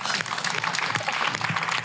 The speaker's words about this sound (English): You're going to applaud for everything these two say. I know.